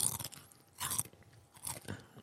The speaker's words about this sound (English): That's a big pet peeve of mine, bro. Don't do that. I'm sorry that I'm hungry and I'm eating chips. Do you really have to crunch like